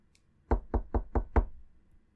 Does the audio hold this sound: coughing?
no